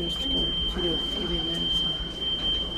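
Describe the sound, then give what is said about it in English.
A patient's call button sounds as one steady, piercing high-pitched electronic tone, held unbroken from start to finish over a low, murmuring background. “God knows why, but the patient's call button in this place isn't a bell or a buzzer like in any normal hospital. It's this.”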